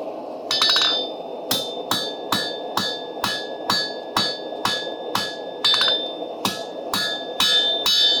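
A light hammer rings out in steady, evenly spaced strikes on hot metal at about 1900 degrees, refining the point of a hand-forged knife blade; each blow bright and bell-like with a short decay, about a dozen hits, with a quiet hum underneath.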